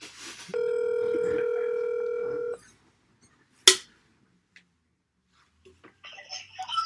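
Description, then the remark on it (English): A telephone keypad tone rings out as a caller is put through on line 4, one steady, buzzy electronic note for about two seconds, followed by a sharp click and then faint, scratchy line noise. “Can you throw me on line 4? Yeah. All right. Beep boop pop.”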